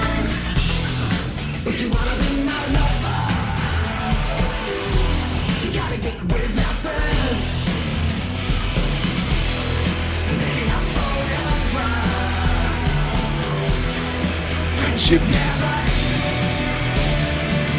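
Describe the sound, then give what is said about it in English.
A loud, dense AI-generated industrial rock song plays throughout, with a grinding, chaotic synth guitar part and shouted vocals over a steady, pounding backing. “Like, it knows what the weird chaotic synth guitar part is,”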